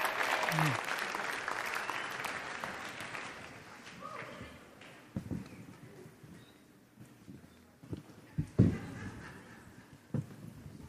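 A crowd bursts into loud, dense applause for the halftime show that gradually thins out and fades, leaving a few scattered claps and sharp taps over a quieter murmur.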